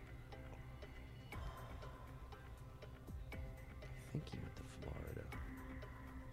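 A clock-style timer ticks in a steady, even rhythm, moderately loud, layered over a dense background of sustained tones and murmur.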